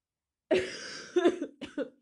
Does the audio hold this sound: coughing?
yes